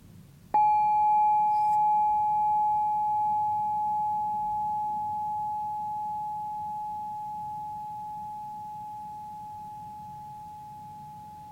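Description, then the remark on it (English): A single bell chime is struck once, leaving a clear, pure ringing tone that sustains and slowly fades away over several seconds. No one speaks; only faint low background noise remains. “And I invite you to grab your bell, if you have one, and join me in let's just do one chime, and then we will take, let's do 20 seconds of just sitting together in silence.”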